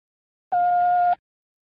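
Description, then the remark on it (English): A single steady electronic beep from a telephone time announcement signal, marking the time as 11:41 and three-quarters, lasting just over half a second at one clear mid-high pitch. It is fairly loud, with silence before and after. “When you hear the signal, the time will be 11:41 and 3/4.”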